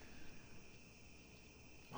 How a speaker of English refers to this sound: Oh, wow, you actually hear the crickets too in the background.